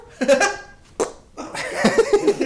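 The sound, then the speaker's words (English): A voice blurts out a loud, buzzy fart noise, with a second short sputter a moment later, then people burst into lively laughter. “What's it going to sound like? Your thumbnail? No. Your fart?”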